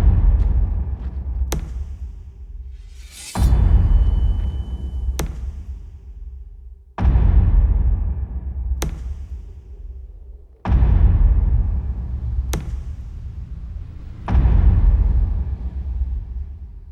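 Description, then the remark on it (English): Slow, heavy knocking from Joel Coen's film The Tragedy of Macbeth: four deep, booming thuds at an even pace, each ringing out before the next, with sharper single cracks falling in between. No one speaks. “Is that knocking?”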